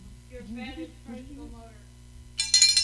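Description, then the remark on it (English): A person speaks briefly, then a small hand bell, the original "Drink Bitch" bell, rings out loudly with a rapid, bright, high-pitched jingling that continues to the end. “This is the original Drink Bitch bell.”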